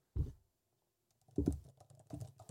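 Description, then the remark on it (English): Fairly quiet typing on a thin laptop keyboard, held raised rather than resting on a table: a short burst of clicks, a pause, then a steadier run of soft, flat key taps with no one speaking. “Sounds like the Surface keyboards.”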